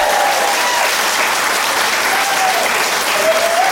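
A comedy show crowd applauds steadily for a few seconds, a dense, loud wash of many hands clapping at once, with faint whistles or cheers rising briefly above it.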